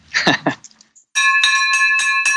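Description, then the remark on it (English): A bright victory bell rings repeatedly in rapid strikes, loud, its sustained metallic tones overlapping, following a brief burst of excited voices; it is rung to celebrate a profitable house deal. “We got the victory bell ringing.”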